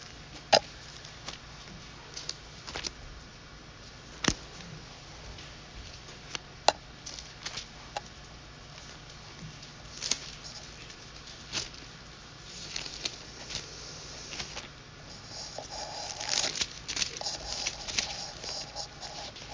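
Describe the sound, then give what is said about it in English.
Soft, scattered rustles and crisp flicks of Bible pages turning to 1 Peter chapter 2, irregular and intermittent at first, then thickening into denser papery shuffling toward the end, with no talking. “Like the beautiful sound of Bible pages turning in a digital world.”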